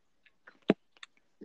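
Crunchy chomping on pickles: one loud crunch followed by a few softer crisp bites and wet clicks, with no talking.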